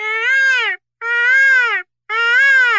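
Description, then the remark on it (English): A person's voice imitates a peacock call with three loud, drawn-out wails, each under a second, arching up then down in pitch, separated by brief silences. It sounds a bit like a crying infant. “Is that a peacock? I really hope so. Sounded like a baby with colic, but I'll take it.”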